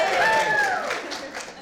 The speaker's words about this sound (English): Oh, and we're getting, people are getting applause. Hey, it's a matter of applause. Got applause.